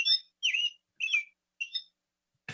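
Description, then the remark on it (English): A robin gives four short, bright chirping calls in an even rhythm, clear, ending with a brief click. “And if my phone goes off, I'll have another robin, but that's a different problem.”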